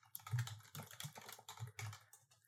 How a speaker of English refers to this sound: I have a very loud keyboard. I just type quietly with it. Oh, I can't do that. I guarantee you my microphone is picking it up though.